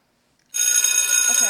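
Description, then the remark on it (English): After a brief silence, a loud electric school bell bursts into a continuous, bright metallic ring during history class, holding a steady shrill tone without pause until the end. “Okay, well, the bell just rang, so now we're late, and we're still in history class, and the teacher is currently yelling at us.”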